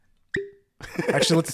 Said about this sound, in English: So hold on. Let's pop the champagne.